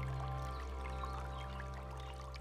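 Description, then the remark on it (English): A steady, gentle rush of flowing creek water murmurs continuously, soft and unbroken, with a low rumble underneath and no voices. “The murmuring creek was all that answered.”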